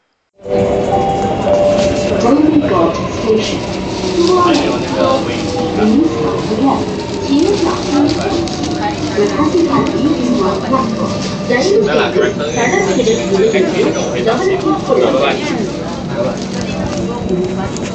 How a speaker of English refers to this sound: Yes, and he recorded the announcement while he was in the train. And there is an announcement in Tamil too.